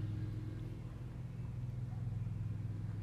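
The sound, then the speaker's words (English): A lawnmower engine runs steadily, a droning low hum with a buzzy harmonic edge that holds at an even level for the whole few seconds, with no voices over it. “Is that a lawnmower? I think it is. I was like, is it passing by?”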